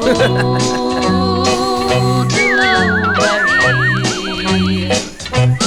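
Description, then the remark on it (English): A person whistles with the tongue, imitating a bird: a wavering, trilling warble, rising and fluttering for a few seconds over a steady bed of sustained musical tones with a repeating low pulse. “But you do something with your tongue. Yeah, it makes sound like a bird.”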